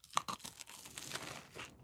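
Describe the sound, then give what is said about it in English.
A loud, crunchy bite into a homemade burger with beef patty and cheese, followed by a couple of seconds of crackly chewing and crumbly texture sounds, with no talking. “That crunch.”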